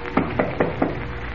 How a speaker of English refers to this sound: As we join them, they are standing in the dimly lit second-floor hallway of a waterfront house. Off in the distance, the foghorn of a lightship moans eerily. Kent knocks on the door.